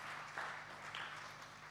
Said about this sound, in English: That's worth a clap here this morning. Come on, let's give the Lord a hand.